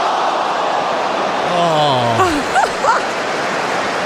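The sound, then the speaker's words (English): A steady roar of soccer crowd noise, recorded by EA for its game, then a collective groan at a missed shot that swells and falls in pitch at mid-clip, followed by a couple of brief vocal bursts before the din settles back. “Here's a missed soccer shot.”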